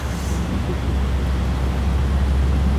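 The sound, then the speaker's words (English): Steady interior hum of a moving bus: a deep, constant engine and road rumble with a wash of hiss above it, holding an even level throughout with no talking. “As you can see, we're on a bus.”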